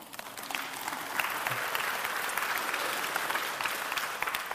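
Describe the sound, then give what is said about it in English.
An audience at a sermon breaks into sustained applause, a dense, steady patter of many hands clapping together for several seconds at an even loudness. “You can clap. That's okay.”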